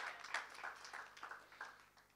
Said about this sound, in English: Clapping like you half believe it.